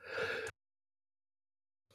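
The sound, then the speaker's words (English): A short, breathy, voiced yawn trails off, lasting about half a second before the sound cuts to silence. “Sorry, I yawned at the worst possible time there.”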